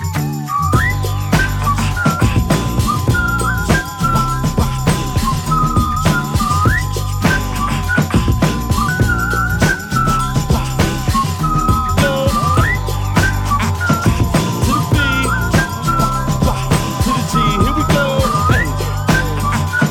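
A person whistles a bright, bouncing melody in short repeated phrases while walking down the street, loud, over a steady thumping beat with bass and a high tinkling layer throughout.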